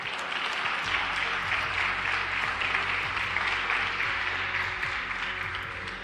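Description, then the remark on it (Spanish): An audience at Numa Church gives applause to God. A dense, continuous wash of many hands clapping holds at an even loudness for several seconds, with faint murmuring voices underneath. “¿Por qué no das un fuerte aplauso a Dios, Señor?”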